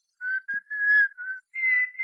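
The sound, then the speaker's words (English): Dagwood Bumstead, standing about 5 feet back from his phone, whistles a few short, steady tones in quick succession, thin as if heard over a telephone line, with brief pauses between notes and no talking. “Will you stand back from your phone about 5 feet, please? Huh? Oh, sure. Sure. I am. Thank you. Now, whistle.”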